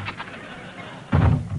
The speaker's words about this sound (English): I'll open the door.